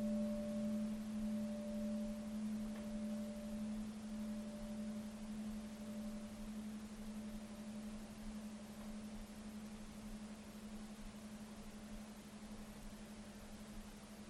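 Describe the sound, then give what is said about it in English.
A meditation bell rung during a guided meditation, its lingering resonance a steady, low humming tone with a fainter higher overtone that fades away after several seconds, quiet against a soft background hiss. No one speaks. “So this first time I ring the bell, I invite you to notice more just the sound of the bell and allowing the attention to rest there.”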